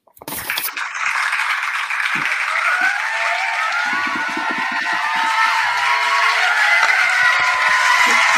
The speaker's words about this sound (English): Applause, applause, applause for the poet. That's the most amazing applause.